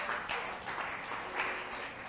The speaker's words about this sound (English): Amen. Let's clap for Jesus.